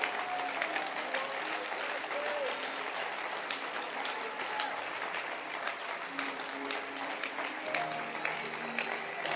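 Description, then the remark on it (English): A crowd applauds steadily for several seconds in thanks for a camp, a dense wash of hand claps holding a fairly even loudness throughout, with faint murmuring voices mixed underneath. “Clap your hands for that experience.”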